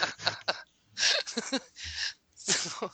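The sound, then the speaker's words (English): Several sharp, breathy sniffs of a drink come in quick bursts with short pauses between them, mixed with faint vocal noises and no clear speech. “Sorry, I was sniffing a weird drink.”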